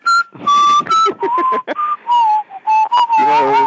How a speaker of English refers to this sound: maybe I'd sing that song by …, …. So, did that whistle.